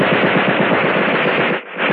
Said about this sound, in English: There was a sudden burst of machine gun fire.